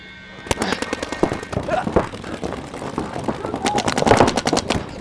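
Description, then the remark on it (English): Rapid bursts of video game gunfire crackle throughout, sharp repeated shots in fast rhythmic volleys, loud and dense, with faint voices mixed underneath. “I shot him too though, huh?”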